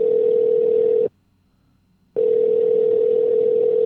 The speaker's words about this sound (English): All right, dialing the champion now.